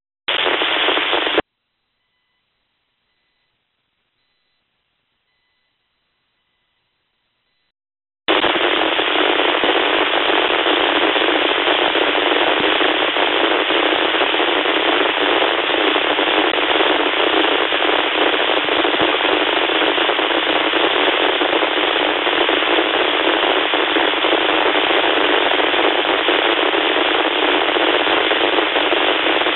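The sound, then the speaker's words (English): A short burst of radio static on an amateur radio net frequency during check-ins cuts off into several seconds of silence, then loud, steady, crackling static hiss returns and continues unbroken to the end, with no voices. “Like the static wants to check in.”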